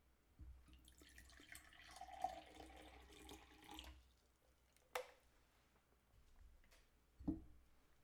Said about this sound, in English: So I'm going to go ahead and pour up. I kind of hate, though, that it's a screw top, so can't, you know, get the pop, however you do it. So yeah, I'm going to go ahead and pour.